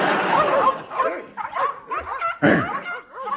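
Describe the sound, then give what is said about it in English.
A human voice imitates a dog with a rapid run of loud yips and barks, some whiny and rising, in an uneven burst lasting a few seconds. “Okay, I'm a dog trapped in the body of a human.”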